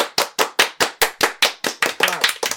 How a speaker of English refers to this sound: Yay, I have more clap tracks now. I love that one clap track.